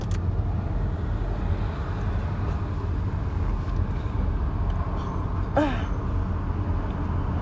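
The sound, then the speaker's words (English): Steady road traffic rumbles throughout, a dense low wash of engines and tires that never lets up, with one brief high-pitched chirp cutting through near the end. “There's so much traffic.”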